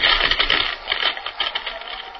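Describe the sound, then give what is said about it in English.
A whining, crackling atomic-energy sound effect: a dense, rapid stream of sharp clicks and sputters over a thin high hum, sustained at a steady level with no voices. “He waits one moment, two, and then the first whining crackle of the deadly atomic power begins. There it comes.”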